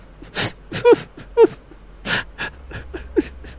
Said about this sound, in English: And all of a sudden, in the darkness, we hear sounds of a child whimpering.